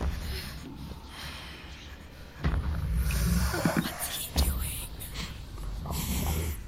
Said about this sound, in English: I think he's sniffing us. Oh, yes. There it is. That nourishing aroma. Your fear filling up my nostrils, sweet. Delicious fear.